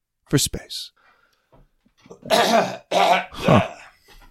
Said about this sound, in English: Huh. I'm a professional. I clear my throat.